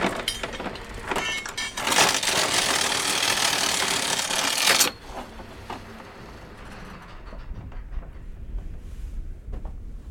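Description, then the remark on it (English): A boat engine chugs steadily and loudly for about five seconds, then is switched off as the boat stops at a small anchor in Bahastvag, a sheltered bay, leaving a much quieter outdoor background with faint water and ambient sounds. “Okay, switch off the engine for a while.”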